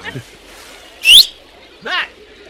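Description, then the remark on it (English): A person gives one loud, shrill mouth whistle, short and rising in pitch, mimicking a lifeguard's whistle, with a brief vocal burst shortly after. “I don't need to use the whistle. This is me. When I do that, everyone knows that's my thing.”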